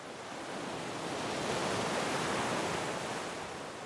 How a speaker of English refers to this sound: The sound of waves crash up on the beach